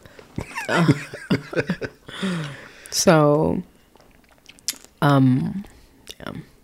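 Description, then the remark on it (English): Wet clicking and sucking mouth sounds of someone working a cough drop around, short irregular clacks scattered between bursts of laughter and voiced murmurs. “Now it's like, I'm eating a cough drop because obviously y'all know I'm sick. Can you hear that?”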